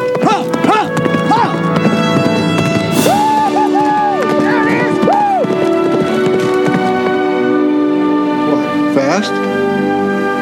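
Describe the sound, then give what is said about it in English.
Rapid horse hoofbeats clatter steadily as a horse races on a track, over a busy, layered backdrop of sustained music-like tones, with brief voices and crowd noise mixed in, fairly loud throughout. “Your horse just broke the track record of Tamfran.”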